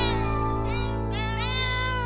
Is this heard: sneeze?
no